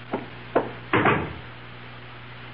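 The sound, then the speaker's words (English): Two quick knocks on a wooden door by a porter bringing a package, then a longer rattling thud as the door is handled and opened, over a low steady hum with no voices. “Someone's at my door.”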